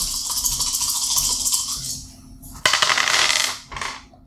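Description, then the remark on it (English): Four dice rattle and tumble across a hard table, rolled to deal lightning damage to a dragon in a game: a steady clatter followed by a sharp, louder roll and one brief final skitter, with no voices. “So he's going to do 4 dice of lightning damage to this dragon.”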